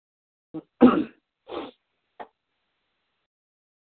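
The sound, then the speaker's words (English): A loud sneeze with a sharp main burst, framed by a few shorter snorting or sniffling breaths before and after, with no talking around it. “God bless you.”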